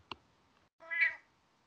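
A single clear cat meow, lasting under half a second, preceded by a brief sharp click; otherwise quiet with no talking.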